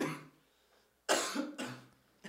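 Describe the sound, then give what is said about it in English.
A person coughs several times in quick succession, three harsh bursts after a brief pause, each sharp and loud before trailing off. “to edit out all my coughing.”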